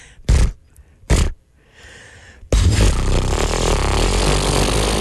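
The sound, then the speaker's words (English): A voice imitates a lawnmower: two short, sharp bursts like pull-starts and a brief breathy hiss, then a loud, rough, sustained sputtering drone that runs to the end. “Hang on. Do your lawnmower.”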